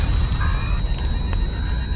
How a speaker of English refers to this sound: Explosions.